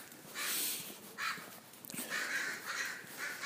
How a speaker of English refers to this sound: And, there's a bunch of crows. They seem to be scaring off. It looks like it's tribal warfare, something.